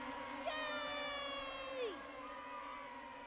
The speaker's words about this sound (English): bees flew out, leaving piles of clothes on the floor. They flew out the doors and into the sky in a big swarm